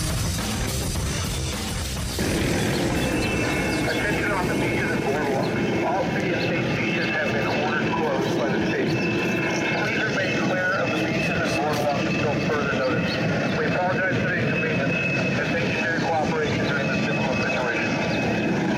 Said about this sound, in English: That was a helicopter doing its best Orwell 1984 impersonation, telling people on a beautiful sunny day in California